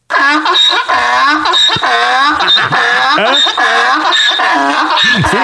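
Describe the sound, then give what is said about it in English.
A real donkey brays loudly, a continuous harsh, honking call that rises and falls in rapid repeated cycles for several seconds. “And play real donkey?”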